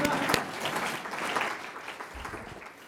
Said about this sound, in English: Thank you, Congressman Pallone. We can clap, and I'll tell him we clapped.